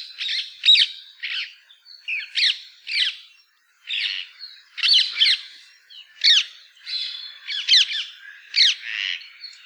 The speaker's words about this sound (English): They can also be incredibly noisy when roosting. Perhaps you've heard the loud squawks of these birds when in flight or at their roost.